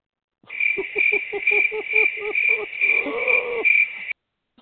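Crickets chirp in a steady, shrill trill for about four seconds, fairly loud, with a quick series of lower rhythmic chirps underneath; no one speaks.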